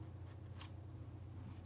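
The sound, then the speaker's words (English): Quiet paper crinkling: a short, crisp rustle near the start and a fainter one at the end, over a steady low hum with no one speaking. “Chapter, oh god, sorry, paper crinkling noises.”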